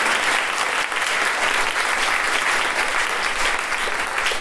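A crowd claps steadily and loudly for several seconds, a dense, even wash of many hands with no voices rising above it.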